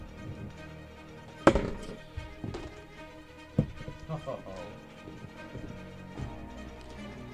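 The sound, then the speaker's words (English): A new set of dice is rolled for initiative in a tabletop game, landing a 17: the dice clatter across a hard surface in a few sharp, rattling bursts, with one loud tumble followed by smaller knocks, while people murmur quietly in the background. “I just have to point out that was my inaugural roll for my new birthday dice that I took out on my birthday.”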